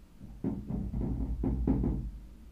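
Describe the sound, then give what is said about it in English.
Heavy, muffled thumping footsteps of upstairs neighbors, around half a dozen dull low thuds in an uneven rhythm, with no talking. “Are they tap dancing up there?”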